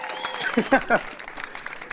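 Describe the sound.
A short burst of audience applause welcoming the first guest host of the night, a steady wash of many hands clapping at moderate loudness, with a voice briefly calling out over it near the start.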